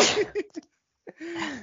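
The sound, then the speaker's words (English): A loud sneeze bursts out sharply, followed after a short silent pause by a second, more voiced sneeze that trails off. “Oh, God bless you. Bless you.”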